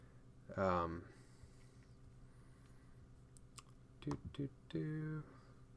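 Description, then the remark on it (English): Scattered clicks of typing on a computer keyboard, a few keystrokes at a time with pauses between, fairly quiet, alongside short bursts of a voice murmuring. “This is a lot of typing to do on the fly.”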